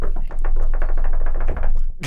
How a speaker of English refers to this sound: I hope you can hear that knocking in our recording.